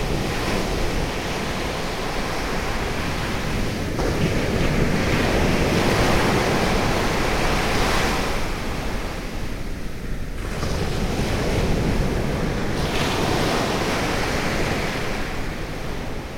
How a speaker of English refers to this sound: I just want to pause to reflect on the experience of walking along a beach with the sea on both sides, which I've never done before. The sea is always only on one side. Surround sound sea. Exactly, it's the sea's in stereo.